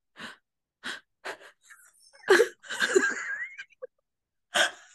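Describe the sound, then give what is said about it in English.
A series of short, sharp breathy intakes, then a louder strained gasping burst with a wheezy squeak around the middle, ending in one more quick breath; a stifled gasp, fairly loud, no speech. “You did like a stifled gasp.”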